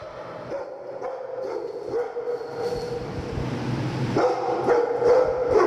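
A military working dog named Paco barks several times in short bursts against a steady, rumbling background hum, fairly loud, with no one speaking.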